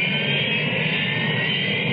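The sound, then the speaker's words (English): A Harrier jump jet engine roars steadily and loudly throughout, a dense continuous rush with a piercing high whine riding on top and no let-up in volume. “It isn't a conventional jet, but it can match the speed of sound.”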